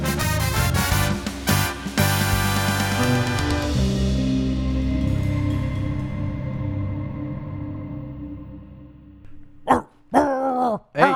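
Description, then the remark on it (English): Music rings out and fades, then near the end a person briefly imitates a dog with a few short, gruff growling barks, fairly loud. “Down, boy. Down, boy. Down, down, down. No bite. No bite. Down. Bark.”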